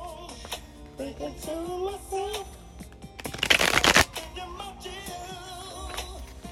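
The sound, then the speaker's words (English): A brief, crisp riffle of a deck of cards being shuffled, a dense fluttering burst lasting under a second, with a woman's voice talking softly before and after it. “Like, my shuffling is not”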